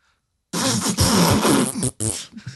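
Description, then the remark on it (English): A loud fart noise sputters for about a second and a half, breaks off briefly, then a shorter wet burst follows. No talking. “Yeah, we're really giving them their money's worth with fart noises.”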